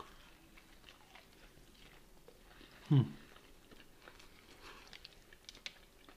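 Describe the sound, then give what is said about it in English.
Quiet chewing of a juicy, crispy breaded barbecue rib: soft scattered crunches and wet clicks, with one louder bite near the middle, and no talking. “The rib is juicy, but it's not greasy from the oil.”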